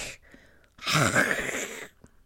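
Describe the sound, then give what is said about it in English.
A single harsh, guttural throat-clearing rasp, fairly loud, lasting about a second after a faint breathy lead-in, as a voice tries to make a scraping consonant sound while pronouncing the name Philip Heedle. “I wasn't just trying to clear my throat. I was trying to make the sound.”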